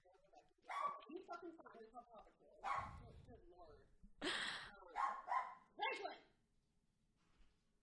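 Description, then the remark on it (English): Several dogs bark and yip in short, sharp bursts, fairly loud, with some higher whiny yelps mixed in before the noise trails off into quiet. “Speaking of dogs.”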